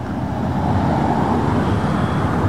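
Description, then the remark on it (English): Steady, dense truck traffic rumbles continuously on a busy road in Newark, with heavy low engine drone from trucks serving the port of New York and New Jersey passing by, no gaps or voices. “Most of the trucks that come to Newark serve the port of New York and New Jersey.”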